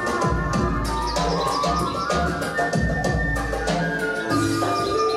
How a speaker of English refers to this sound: Let's hear a little flute.